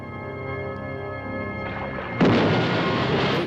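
A low rumbling drone builds, then a single loud dynamite explosion bursts in and roars on as a sustained, noisy blast before cutting off abruptly. No one speaks.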